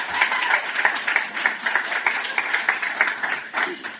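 Steady crowd applause for the short film The Devil Doll at the Shocktober event in Irvington. Many hands clap in a dense, continuous patter, fairly loud throughout, with a few faint cheers mixed in.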